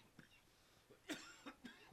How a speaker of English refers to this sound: I've got a cough due to cold. Oh, stupid cough.